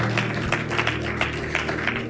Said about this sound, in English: Can I get a very big amen? Clap your hands for God.